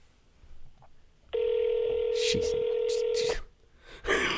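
A touch-tone phone sound as a call is placed again: a loud, steady electronic beep holding for about two seconds, with brief rustling noises over its end, then quieter background noise.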